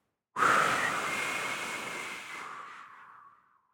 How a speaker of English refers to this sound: This next breath, feel it all the way to the bottoms of your feet. Breathing in through my nose. Breathing it into your chakra.